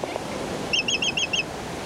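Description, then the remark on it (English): A quick run of about five short, nasal honking calls from a black-footed albatross, evenly spaced and fairly clear, over a steady wash of background noise. “the black-footed albatross collects squid and masses of flying fish eggs with its long, hook-tipped bill”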